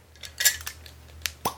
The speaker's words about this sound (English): You are wrecking pig's ear taking that cork out.